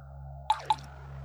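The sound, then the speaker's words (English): Two quick water drips land a fraction of a second apart, each a bright, hollow plop with a falling pitch, over a steady low hum. “Tilt your head to one side and I'll hit you with a drip.”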